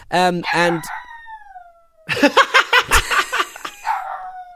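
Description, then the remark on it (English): Sammy, an excited young dog in the apology cabin, gives a little baby howl: two bright yelping cries, a long thin whine sliding downward, then a quick string of excited yips and a final wavering whine. “It's the only kid really sort of hear him have a little baby howl.”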